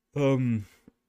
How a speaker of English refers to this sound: I'm sorry I yawned just now. I'm honestly tired.